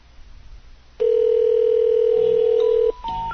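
A steady telephone dial tone hums loudly for about two seconds, then cuts off into a couple of short, higher-pitched dialing beeps. No one speaks.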